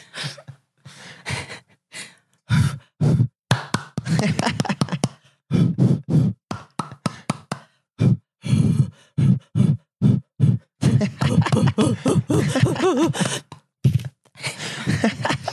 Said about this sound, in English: So that's the rhinos breathing, and then they smash their horns together.